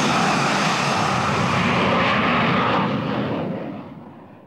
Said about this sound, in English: And 100 times greater still, 25 metres away from a jet aircraft taking off.